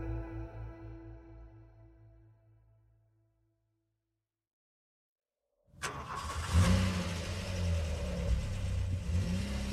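car engine

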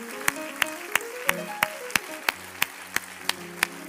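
audience clapping hands

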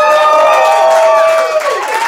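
audience clapping and cheering

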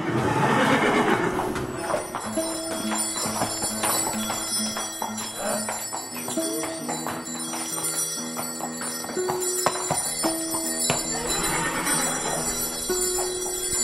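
horse whinnying

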